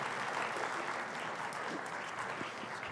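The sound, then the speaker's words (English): An audience claps steadily and loudly for the interns, dense overlapping hand claps forming a continuous wash of applause with no pauses, and no voices standing out above it. “Clap for our interns.”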